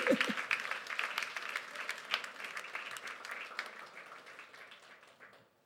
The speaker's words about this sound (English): Oh, you clap your hands before I make the last point.